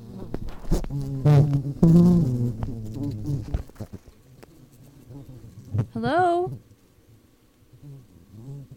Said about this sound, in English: So the other day, I got a phone call and my bees had butt dialed me. Have a listen.